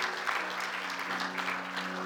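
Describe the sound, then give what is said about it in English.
A church audience claps steadily throughout as people leave, a dense, continuous patter of many hands with a low hum underneath, fairly even in loudness. “Let's give them a good hand clap as they go.”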